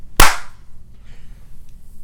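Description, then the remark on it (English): One sharp, loud hand clap near the start, made after a spoken countdown of three, two, one, a crisp burst that dies away quickly into a faint low hum with no one talking. “any we need updates to clap”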